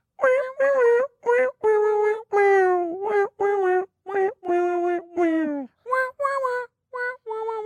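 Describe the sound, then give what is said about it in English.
A voice imitates the strange, dying duck-like noise of a song: a loud string of about a dozen short, nasal, wavering honks, several sliding downward in pitch, with brief gaps between them. “Sometimes it goes from that weird dying like duck noise to a triangle.”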